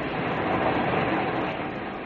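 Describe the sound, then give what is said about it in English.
A steady, dense rumble of a roller coaster rolling along its track on the pier at Fun City Amusement Park in the afternoon, a continuous broad roar that holds even in loudness with no distinct screams standing out. “The buzz of strolling fun seekers is momentarily drowned out by the screams of roller coaster riders.”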